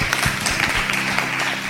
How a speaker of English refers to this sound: Three beautiful girls. Clap for the beautiful girls.